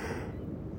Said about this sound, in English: That's a yawn.